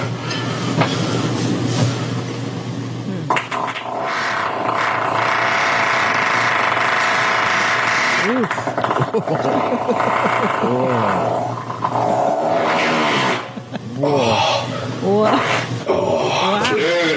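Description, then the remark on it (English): Loud, drawn-out farts rip through almost without pause, raspy and sputtering with wobbling, bending pitch. Several rough bursts blur together into one long flatulent rumble. “Fucking start sending me some gassy ass beans so I can make these farts even bigger.”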